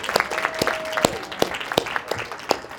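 An audience applauds steadily for yoga superstar and best-selling author Tara Stiles, a dense patter of many hands with a few sharper, louder claps standing out, and a thin held tone briefly rising above the clapping partway through. No one speaks.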